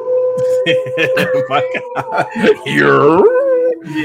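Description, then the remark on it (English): A person lets out a loud, rising wolf-like howl, imitating a wolf, right after a few seconds of lively talking and background voices. “I man got all types of wolves going on in this pack, man.”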